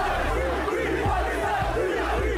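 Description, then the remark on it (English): A large crowd at a street rally in Manchester, UK, shouts "free, free Palestine" in unison, a loud, dense roar of many voices rising and falling in rhythmic chant-like bursts, with a steady low rumble underneath throughout. “They're shouting free, free Palestine on the streets of Manchester, UK.”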